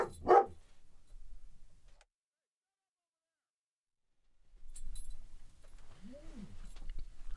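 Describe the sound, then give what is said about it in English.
A dog gives one loud, sharp bark right at the start, followed by a stretch of near silence, then a low background rumble and a brief rising-and-falling whine-like tone. “Come here. Come back. I see him. I see him on the camera. Come on. Hey! We got you. Good dog.”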